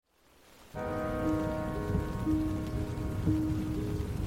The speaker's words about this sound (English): Rain drizzled over the canyon of the South Fork of the Ogden River. It pattered on the canvas top of Heidi Posnien's Jeep as she drove up Utah State Highway 39 on the morning of Friday, June 4th, 1971.